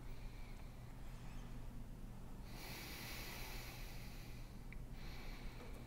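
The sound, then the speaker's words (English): A person demonstrates incorrect breathing with quick, shallow breaths, airy and slightly snorting, the breathing growing louder and hissier partway through. No one speaks. “When we're breathing incorrectly, show us again.”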